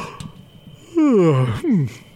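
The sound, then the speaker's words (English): A man imitates a yawn with his voice: a loud, drawn-out vocal sound that slides downward in pitch, followed by a second shorter descending groan, with no other talk. “Oh, okay, so if I'm yawning, I go”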